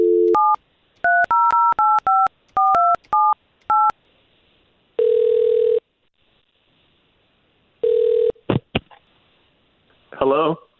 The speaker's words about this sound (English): All right, let's make that phone call then.